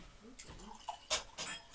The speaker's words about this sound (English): Well, let me pour myself a little bit more of the Spanish one, and you can go ahead and grab it.